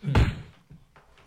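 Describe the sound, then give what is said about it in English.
A single heavy bathroom door slam sound effect hits hard, a deep booming thud with a short rattling decay, followed by faint quieter knocks and room noise. “No, I pressed the bathroom. You see that door right there?”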